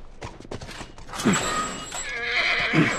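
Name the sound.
horse neighing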